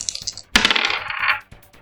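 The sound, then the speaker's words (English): A couple of light taps, then a burst of rattling clatter as two six-sided dice are rolled for fire damage, tumbling across a hard tabletop for about a second before settling, fairly loud, with no voices. “There's 2d6. 2d6. Two normal dice.”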